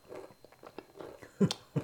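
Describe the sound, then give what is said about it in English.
Crunchy chewing of cheesy snack treats from a 5-ounce pack, a series of soft bites building to two sharper, louder crunches near the end, with no talking. “you're chewing with your mouth closed.”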